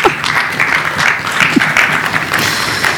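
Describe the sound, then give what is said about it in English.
A steady round of applause, many hands clapping in a dense, continuous patter that stays fairly loud throughout the few seconds, with no voices standing out. “Round of applause, maybe?”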